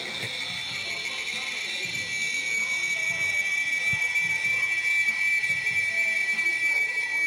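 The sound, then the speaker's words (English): A chorus of cicadas playing through a phone speaker: a continuous, high-pitched droning whine with a steady tone, holding unbroken throughout and swelling slightly louder partway through. “And they went, "Cicadas."”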